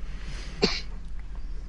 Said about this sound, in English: Sorry, I got a little bit of a cough going.